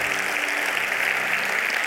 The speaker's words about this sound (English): Come on, let's give the Lord a round of applause.